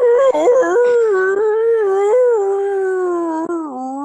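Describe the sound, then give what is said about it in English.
A person imitates a wolf howl: one loud, sustained, wavering note that wobbles early on, then slides slowly downward for about four seconds, alone with no talking. “Okay, and then that werewolf guy, he stretches and he does a loud howl.”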